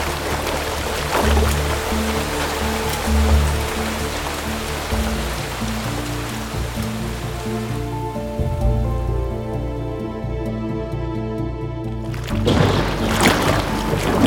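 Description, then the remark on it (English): Steady, heavy storm rain with continuous sloshing, splashing water as people walk through floodwater on their street, while sustained musical tones swell underneath and fade near the end; no one speaks. “If this storm gets any worse, we might have to swim for it.”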